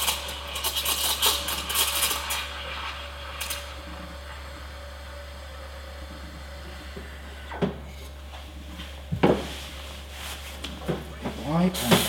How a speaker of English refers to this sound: I'm just steaming the milk.